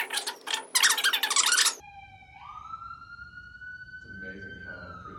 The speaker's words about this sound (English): We suspect that on Saturdays they're testing the sirens. Because it's always the same time, right? Seems to be.